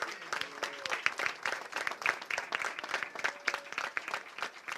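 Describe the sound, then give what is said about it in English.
A crowd applauds steadily to thank the team and staff on stage, many hands clapping in a dense, continuous patter that holds its level throughout, with a few faint voices or whoops mixed into the noise. “Let's thank our team very much for their great support.”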